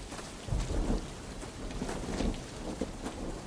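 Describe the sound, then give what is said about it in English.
Low rolling thunder rumbles through a steady wash of heavy rain, with a deeper boom near the start and another swell later, all continuous. “Pierre and Remy hurried through the mud, slipping and sliding in the ooze as the first rolling booms of thunder split the sky”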